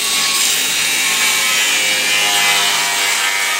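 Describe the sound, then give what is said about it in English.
An angle grinder cuts through metal beams for scrap metal recycling, the friction throwing lots of sparks, with a loud, continuous high-pitched grinding screech and harsh hiss, holding steady for the whole stretch with no voices. “Here, he starts cutting the metal beams. The friction makes lots of sparks.”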